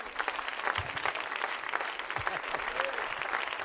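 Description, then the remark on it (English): An audience at a church service applauds for Jesus, a steady, dense patter of many hands clapping at a fairly even loudness throughout, with faint voices mixed in underneath. “Well, let's clap for Jesus, everybody.”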